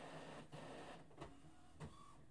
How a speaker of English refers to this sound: My printer turns itself off after so many moments.